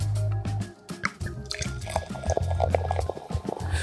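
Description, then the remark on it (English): Cristal champagne pours into glasses, a steady gurgling, fizzing stream broken by small splashes and drips, with no talking over it. “Ooh, we're having some barefoot bubbly. No, this is fucking Cristal, dog.”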